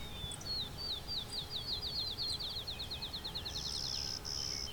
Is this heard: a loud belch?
no